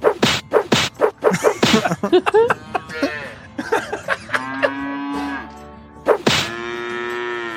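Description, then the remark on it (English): A quick run of thumps and knocks gives way to a cow mooing, with a long drawn-out moo, a pause, and a second loud, sustained moo. “All of a sudden, you walk up on the cow, and he's like, "Oh, God damn it!”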